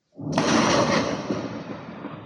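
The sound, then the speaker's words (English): A loud, crashing metallic bang like a trash can being struck, used as a lightning round sound effect, bursts in suddenly, then rings and rumbles away in a harsh, noisy wash for about two seconds, with no voices. “As some of our listeners have pointed out, it kind of sounds like a trash can or other things.”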